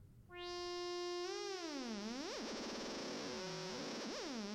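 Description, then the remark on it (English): A loud, buzzy synthesizer tone holds steady, then its pitch starts swooping up and down in slow, repeating waves from an LFO, sounding dry with no reverb. “Now let's hear that with that LFO again.”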